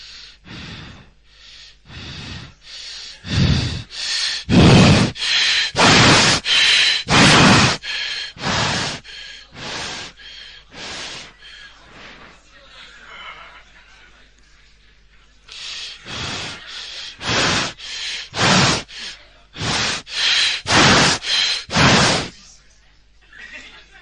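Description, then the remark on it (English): A person imitates Cheyne-Stokes breathing: rapid, gasping breaths coming in two waves that swell louder then fade, with a near-silent pause of a few seconds between them. “It's called Shane Stokes breathing.”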